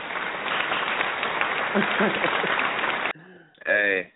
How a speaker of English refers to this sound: And I'm giving myself a hand clap.